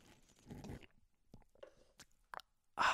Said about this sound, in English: Let me take a sip of coffee real quick.